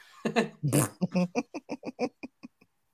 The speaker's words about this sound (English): So, was that our first fart live?